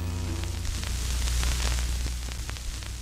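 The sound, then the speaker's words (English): A steady wash of white noise hiss, of the kind emitted in secure compartmented information facilities to prevent eavesdropping, fills the whole clip, with a low droning hum underneath and scattered faint crackles, like radio static. “Some emit a kind of white noise to prevent eavesdropping.”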